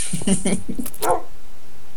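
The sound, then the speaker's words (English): A dog named Sugar Dunkerton gives a short, sharp bark near a steep edge, mixed in with brief voice sounds at the start, then everything falls quiet for the final second. “Oh god, it's a bit worrying when my own dog's trying to push me off the edge.”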